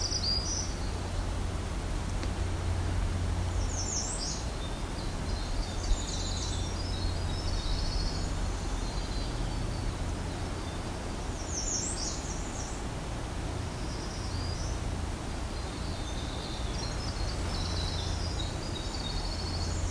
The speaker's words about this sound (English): Now back to our black-throated green warbler.